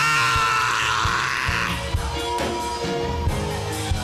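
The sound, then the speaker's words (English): A crowd roars and screams together in a dense, sustained wall of shouting voices, with loud low thumps pulsing underneath at a steady beat throughout. “Release the roar.”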